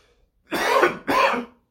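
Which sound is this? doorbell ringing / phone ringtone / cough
cough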